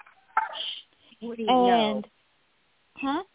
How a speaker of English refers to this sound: Sorry, I have new windows, and they're so nice and clean and bright that my little puppy is seeing his reflection and barking.